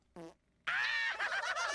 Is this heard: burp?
yes